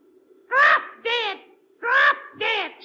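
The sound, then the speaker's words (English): A pet parrot named Polly, from Perez's pet shop, squawks out four short, warbling, speech-like calls in two quick pairs, loud, over a faint steady hum. “No, no, it is a parrot, Commissioner.”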